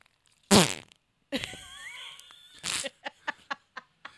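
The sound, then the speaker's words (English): A series of loud, comedic fart sound effects: a sharp blast, a long wavering squeaky one, another burst, then a run of short rapid pops trailing off. No talking. “Yeah, this is my day today, playing with fart noises.”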